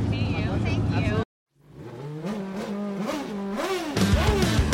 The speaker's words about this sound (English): Nice red car coming by here.